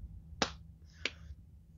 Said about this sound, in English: I am impressed. I'm going to clap for me.